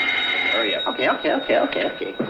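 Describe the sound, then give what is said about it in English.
A telephone at the Ajax Plumbing Company rings with a steady, high electronic tone that holds through the whole moment, while a man talks loudly over it. “Albert, answer the phone.”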